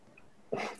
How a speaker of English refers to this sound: Bless you.